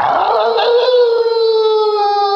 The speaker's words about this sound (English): As Zeus began his ascent back to Mount Olympus, Lycaon tilted his head back, looked at the moon, and began to howl.